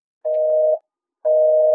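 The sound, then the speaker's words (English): A telephone busy tone after the line goes dead mid-call: two steady, equal half-second beeps separated by a half-second gap, clear and fairly loud, with no voices on the line. “And then, the line goes dead.”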